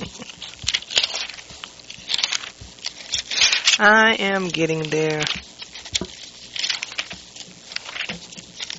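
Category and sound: household object, bible pages turning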